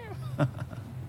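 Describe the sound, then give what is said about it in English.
A person's voice imitating a cat's meow, a few short, gliding mews in quick succession, moderately quiet, with nothing else around them. “And the little ant's going, meow, meow, meow, meow.”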